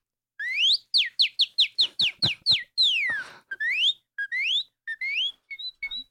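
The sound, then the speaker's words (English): A person whistles an imitation of a northern cardinal's song: a loud series of rapid sliding whistled notes, then a long downward slur and several rising phrases, with no talking. “let me start by asking you to do the bird call of my favorite bird. Okay. And that's the cardinal.”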